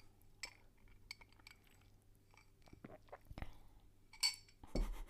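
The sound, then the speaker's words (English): A quiet sip from a glass: soft wet mouth and lip noises, a gulp, and a light glassy clink, followed by a slightly louder rustling slurp at the end. No one speaks. “What about if I take a sip?”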